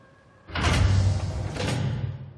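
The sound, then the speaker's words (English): A vertical sliding door rumbles open with a loud mechanical whoosh after a brief quiet moment, carrying a deep low hum and a second surge of hiss before it settles, with no voices. “I definitely invented vertical sliding doors, though.”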